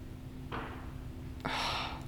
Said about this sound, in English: Stupid fireworks. If you're one of those neighbors that does fireworks before 4th of July, whatever.